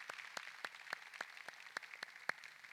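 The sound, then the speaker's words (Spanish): Audience applause, with about ten sharp claps in a steady, even rhythm standing out above a soft, continuous wash of clapping. The whole clip is fairly faint, and nobody speaks. “Ahora, yo creo que eso merece un aplauso, definitivamente que sí.”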